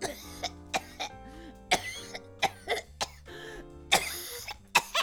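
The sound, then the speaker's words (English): A harsh, repeated coughing fit that brings up blood and tissue, with about nine sharp, wet bursts in quick succession, some with raspy throat-clearing between them, fairly loud with no talking. “I don't think you're supposed to cough up blood and tissue like that.”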